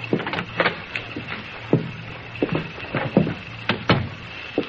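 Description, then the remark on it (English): A skeleton key clicks and rattles in the lock of the door to Dr. Spencer's offices, suite 202, followed by the door being opened, with a series of sharp metallic clicks and taps over a faint steady hum. “The same key unlocked the door to Dr. Spencer's offices.”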